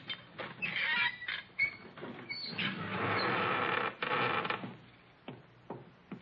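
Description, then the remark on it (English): A secret door leading into the Sheik's chambers creaks slowly open with a long, grinding, squeaky groan that rises and stutters for several seconds, fairly loud, with no voices. “This door takes us right into the Sheik's room.”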